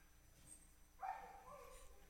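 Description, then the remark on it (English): A female pet dog barks in the room, a sharp bark followed by a trailing second yelp, fairly faint over a quiet background hum. “My dog might be ejected from the room. She is going crazy, isn't she?”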